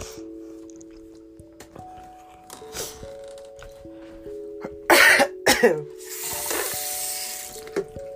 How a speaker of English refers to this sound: Now I'm coughing.